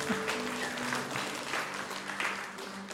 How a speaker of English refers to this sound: Amen to that, right? You can clap if you want. We can be excited about that.